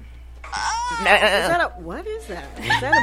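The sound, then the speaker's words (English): A goat bleats loudly in a few wavering, quivering cries that sound almost like a person sobbing, with brief gaps between the bleats. “DJ Meltastic is over here playing with some crazy sounds. What's going on over there, Mel? I heard like a crying goat.”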